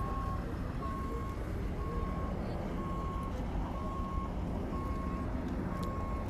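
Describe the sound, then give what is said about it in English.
An ambulance's reversing alarm beeps steadily at the Griffith Park Observatory, a single mid-pitched tone repeating about once a second, heard over a continuous low engine rumble and outdoor background noise. “Ambulance.”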